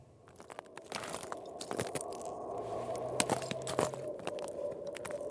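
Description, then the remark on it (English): Crunching footsteps on the frozen ice in the middle of Lake Inari, in the Arctic Circle in the far north of Finland, in late afternoon: slow, uneven steps with crisp, gritty crackles over a steady granular hiss, a faint low hum briefly underneath. No one speaks. “I'm treading, gingerly, across the frozen ice on the middle of Lake Inari.”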